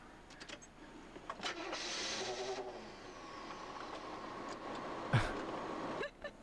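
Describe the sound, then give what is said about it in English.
A rough car engine cranks and sputters to life, grinding unevenly before settling into a ragged idle, with a sharp clunk midway through; moderately loud. “That's a rough sounding car.”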